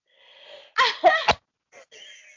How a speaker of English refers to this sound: And that is, oh my God, I'm going to sneeze again. Oh no.